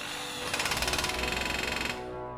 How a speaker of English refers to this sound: The longer they spent on the job, the greater the chance that someone would hear the whirring and pounding of the power tools.